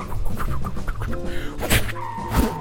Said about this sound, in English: Oh, there's a car driving by. I'm going to try to lasso us on there, and hopefully it can give us a ride.